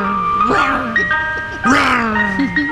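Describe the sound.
A tinkling ice cream truck jingle plays steadily, its bright melody sustained while a voice talks over it in short bursts.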